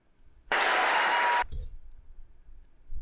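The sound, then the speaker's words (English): A short, loud burst of audience applause lasts about a second, a dense wash of clapping that cuts off abruptly, followed by quiet low rumble and a few faint clicks. “Then they applaud.”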